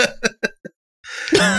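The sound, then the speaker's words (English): Four short, clipped coughs in quick succession, a brief pause, then a louder, raspy open-mouthed cough from a woman on a stage, coughing uncovered right at a man while wearing a microphone, with no talking. “Like, she just open mouth coughs right at him.”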